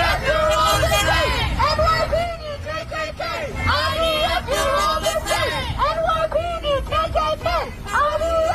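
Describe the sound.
A large crowd of protesters blocking traffic on the roads to JFK airport chanting together outdoors, many voices overlapping in loud, continuous, rhythmic calls with shouting rising and falling throughout.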